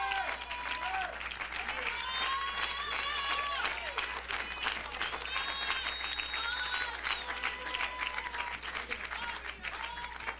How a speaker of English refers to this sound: Clap your hands.